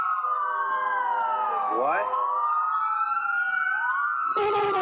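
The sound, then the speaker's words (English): A fire engine siren wails loudly and continuously, its tones sliding up and down as it passes by, with a brief burst of other noise near the end. “I hear a fire engine.”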